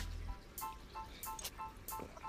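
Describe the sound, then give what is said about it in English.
Someone drinking Polar Ice vodka after a toast: a quiet series of wet sips and small liquid sounds, repeating every half second or so, with no talking. “So once again, we're drinking the Polar Ice.”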